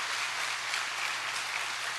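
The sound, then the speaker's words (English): A church audience applauds steadily, many hands clapping together in a dense, continuous wash of sound that holds at an even level throughout, with no voices standing out; they are clapping for a gift the church gave to fully equip a room with technology. “Yeah, you ought to clap for that.”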